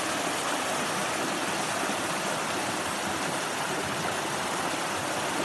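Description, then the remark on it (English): Steady rushing water at the bottom of the North Fork of Big Granite Creek fills the whole recording, a dense, even hiss with no pauses or talking, fairly loud. “Bottom of Big Granite Creek, North Fork, looking upstream.”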